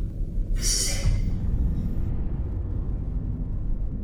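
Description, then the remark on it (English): A storm's sharp, bright thunderclap cracks early on, then a deep, heavy rumble rolls on steadily and loudly for several seconds, with no voices. “What was that? It's the storm.”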